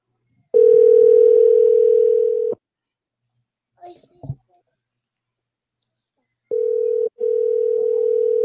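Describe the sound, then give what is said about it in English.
A steady, loud telephone dial tone while a call is being placed holds for about two seconds, then cuts out; a few soft clicks follow before the tone returns, briefly interrupted once, with no one talking. “I'll call you, matter of fact. I'm going to call you.”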